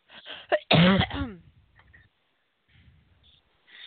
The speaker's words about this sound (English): Yeah, I've been listening to you cough. I've been wanting to get your cough drop.